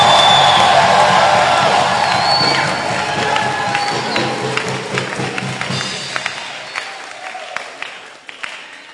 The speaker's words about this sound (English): Clap your hands, lift up your voice, and give the Lord a shout.